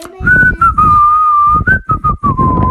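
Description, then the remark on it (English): A person whistles a simple tune, a clear sustained tone that wavers gently in pitch and slowly drifts lower, with soft breathy accents between notes. “I could whistle all day, but no, I'm already kind of tired of whistling.”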